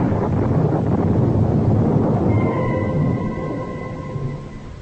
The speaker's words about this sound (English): But again the clouds are gathering, and the storm is at my heels.